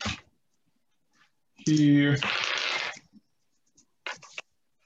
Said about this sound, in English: I shuffle all my papers around